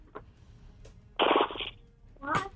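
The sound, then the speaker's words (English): A person imitates a horse, giving a loud, fluttering whinny-like burst of about half a second, followed moments later by a short, higher voiced squeal. “What does a horse noise make?”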